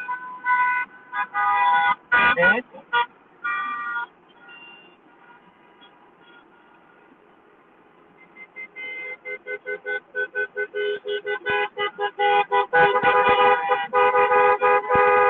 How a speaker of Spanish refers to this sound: Increíblemente, esto es uno de los momentos más grandes que he visto de caravana de autos. Aproximadamente 3.000, 4.000 automóviles. Esto es increíble.